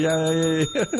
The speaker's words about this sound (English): Yeah, Abraham is indeed mentioned. He gets a bell,